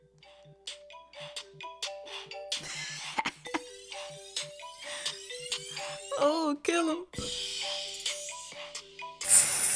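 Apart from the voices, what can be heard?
phone ringtone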